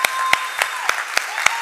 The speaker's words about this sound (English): Come on, can we just take a minute and give God some praise right now? I'm not talking about a little golf clap. Come on, clap, clap, clap, clap.